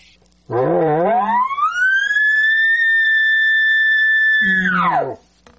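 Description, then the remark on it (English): An elk location bugle: a low, breathy start rising into a long, steady, whistling high note that holds for several seconds, then drops and fades gently without a growl at the end. “Just get into that high note. But then don't end it with a big growl or anything on the end.”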